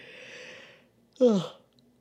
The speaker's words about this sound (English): Oh, that's a yawn. You just heard me yawn. I'm sorry, guys. I'm gonna leave that in. I don't feel like cutting that out.